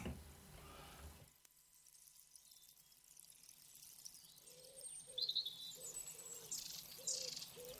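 Faint birdsong in a quiet outdoor setting: a steady series of soft, low cooing notes repeating in a rhythm, with a few brief high chirps above them. No one is talking.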